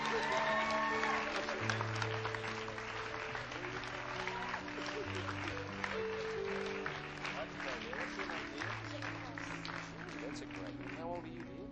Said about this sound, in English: Let's give him a great clap. Welcome to the family of God.